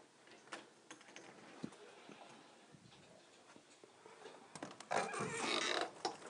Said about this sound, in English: Sorry if y'all hear my microphone moving.